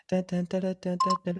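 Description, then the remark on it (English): A voice hums or sings a short breaking-news style jingle, imitating the iPhone breaking news ringtone with six quick, even-pitched notes in a steady rhythm, fairly loud. “I realized the breaking news sound effect, you could get that from your iPhone ringtone.”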